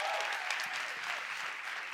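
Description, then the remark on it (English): Steady audience applause at a church service, for the pastor's wife, fills the whole stretch, a dense wash of many hands clapping at an even, fairly loud level with no pauses and no voices standing out. “Y'all clap it up for my wife one more time.”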